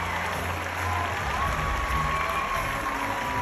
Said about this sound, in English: So here is the crowd giving Will Smith a standing O. Wild cheering.